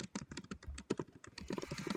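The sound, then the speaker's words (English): Rapid, uneven clicking of computer keys being typed into a chat, a steady flurry of sharp little taps, with no voices over it. “We can also hear you typing, yeah.”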